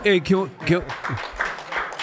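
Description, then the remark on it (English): A voice speaks briefly, then a quick run of hand claps follows, several sharp claps in an uneven rhythm, moderately loud with some talk overlapping. “Why did it clap louder for that than when you walked in the room?”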